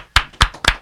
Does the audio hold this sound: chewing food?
no